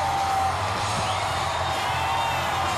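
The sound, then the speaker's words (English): A dense, steady roar of a large outdoor crowd cheering at a parade as a fire truck passes amid confetti, loud and unbroken throughout, with scattered whoops and yells blending into the continuous wash of noise. “Listen to the crowd. It's a constant roar.”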